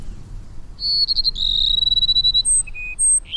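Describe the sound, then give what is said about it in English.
A male Cassin's sparrow sings its courtship song alone in the Sonoran Desert after the late summer rains, clear: a brief fluttery trill, then a long sweet whistled note, followed by two shorter whistles that step down and back up in pitch. “Cass and sparrows have waited for the late summer rains to begin their courtship. Now the males sing their plaintive phrases almost nonstop.”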